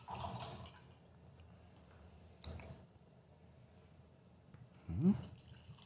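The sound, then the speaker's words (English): Faint peanut butter whiskey being poured into a glass away from the microphone, with a short gurgling glug near the end and a few soft clinks and rustles before it. No one speaks. “Oh, I forgot to pour near the microphone.”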